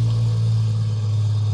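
A steady, low engine drone hums continuously as a car idles outside, with a strong constant rumble and no voices.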